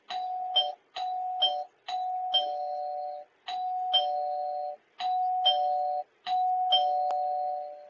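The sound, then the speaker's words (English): A doorbell rings over and over, its two-note ding-dong chime repeated six times in quick, insistent succession, each ring sustaining briefly before the next, with no voices. “Someone's at the door.”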